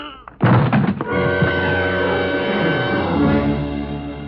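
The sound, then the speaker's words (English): A single heavy, blunt strike of a gun butt swung into a man's skull lands loud, then gives way to a sustained, ringing tonal drone. “I beat him to it and swung it straight into his skull.”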